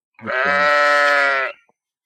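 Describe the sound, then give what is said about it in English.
A single loud bleat lasting over a second, made by a person's voice imitating a sheep, with a steady wavering pitch and an abrupt end. “I'm gonna go with the sheep noises because I've got an 8-month-old baby and I'm doing them anyway every day.”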